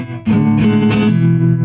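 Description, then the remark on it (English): A clean Stratocaster electric guitar chord rings out, with a gentle wavering built-in vibrato and a touch of reverb. It is moderately loud, and no one talks over it. “It's just built-in vibrato and the some reverb, Stratocaster.”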